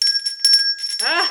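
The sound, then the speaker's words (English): A small bell rings bright in a quick series of strikes to celebrate a milestone of just over seven years in recovery, its clear tone sustaining throughout, and a voice begins talking over the ringing near the end. “We have a bell, folks, if this is your first time listening. We celebrate milestones, people, events on our podcast.”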